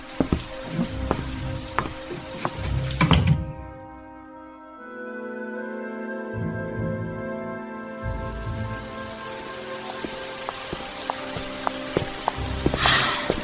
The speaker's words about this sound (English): Raining again. Why is it after September it just seems to rain all the time? You live in the Northwest. What did you expect?